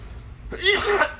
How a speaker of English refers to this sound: That's a weed cough, not Corona, y'all. It's good weed.